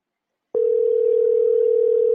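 After a short silence, a steady, unbroken telephone ringing tone on an outgoing call, routed through a Rodecaster Pro, comes in and holds at an even level, clear with nothing else over it.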